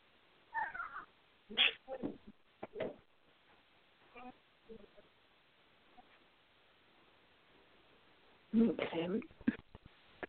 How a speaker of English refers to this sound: Okay. I hear you, little bird. I hear you.